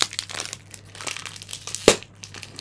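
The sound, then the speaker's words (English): A plastic wrapper crinkles and crackles in a continuous stream of small, irregular rustles, with one sharper, louder snap near the end as it is pulled open. “Oh, don't chew the wrapper.”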